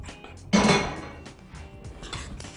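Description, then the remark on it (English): A utensil clatters against a bowl with a sharp clink, then a steady scraping and rustling follows as dough ingredients (flour, yeast, salt and olive oil) are stirred together before water is added, with small knocks scattered through. No one speaks. “But first I'm gonna give this a little stir, just get that mixed together and add my water.”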